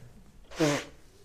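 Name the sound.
nose blowing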